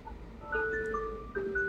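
An alarm sounds alone with sustained electronic tones, shifting pitch in steps like a simple chiming melody, the pattern restarting partway through at a steady, moderate level.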